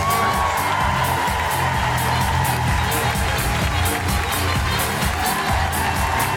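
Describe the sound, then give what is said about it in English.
A crowd at a Fringe show cheers and applauds loudly and steadily as a performer is welcomed, with dense clapping, whoops and shouts blending into a continuous roar that holds at full strength throughout. “Big round of applause for Steve Alley!”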